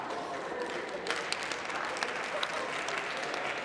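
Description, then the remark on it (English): An audience claps steadily, a dense wash of many overlapping hand claps with sharper individual slaps popping out now and then, loud and continuous with no talking. “Oh, don't clap too loud, lady, because y'all the same way.”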